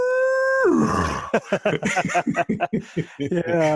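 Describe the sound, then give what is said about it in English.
A person loudly imitates an elk bugle: a high, sustained whistling note that drops abruptly into low, rough grunts, then continues as a series of choppy, chuckling vocal bursts. “Branches cracking, and elk bugling.”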